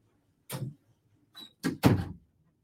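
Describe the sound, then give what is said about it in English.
A door is pushed and then shut: a few knocking, rattling movements followed by two solid thuds, with no one speaking. “Give me timeout for 1 second. There's this door.”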